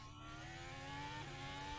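Racing cars roar past at speed as Max is getting out of his car, a loud, steady engine whine with a slight pitch shift partway through, filling the short stretch without any voices.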